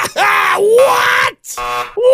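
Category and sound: sound effect, buzzer sound effect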